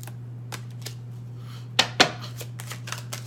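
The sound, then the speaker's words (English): Tarot cards being shuffled: scattered soft papery taps and flicks, then two sharper, louder slaps in quick succession, all over a faint steady hum with no voices. “Just let me finish the shuffle.”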